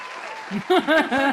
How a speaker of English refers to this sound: We now know who Mark Wade is. He's important. We're giving him a clap.